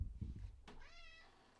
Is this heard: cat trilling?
yes